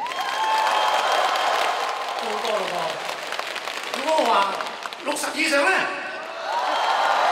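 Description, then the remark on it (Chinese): A large crowd of fans at a singer's concert claps steadily in a dense, continuous wash of applause when asked to clap if they are over 40, with a few voices rising briefly through it before the clapping swells again toward the end. “40以上，掌声！”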